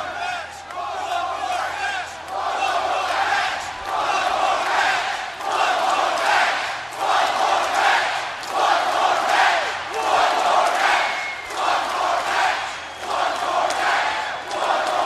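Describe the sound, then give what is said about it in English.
A huge WWE wrestling arena crowd chants in a steady, rhythmic pattern, swelling in regular loud bursts with cheering throughout, a dense roar filling the large space with no single voice standing out. “One more match from one of the better crowds that I've been in front of in the last 5 years.”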